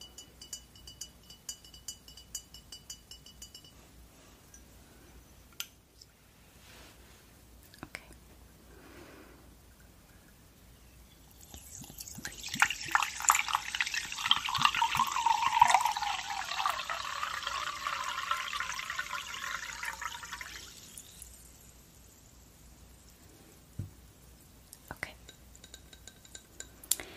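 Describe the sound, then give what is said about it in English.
A few soft clinks and handling sounds, then a steady fizzing pour of Perrier sparkling water from a bottle into a glass for several seconds, fairly loud, before the bubbling settles into quiet. “A nice bottle of Perrier sparkling water.”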